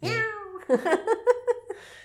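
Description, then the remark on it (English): A cat named Claude yowls after being kicked: one long, drawn-out wailing cry followed by a quick series of five or six shorter, pulsing yowls, loud and distressed. “A bloody cat. Probably. That's why she's trying to track down Claude, because he keeps drinking her liquor. Yeah. Just boots him.”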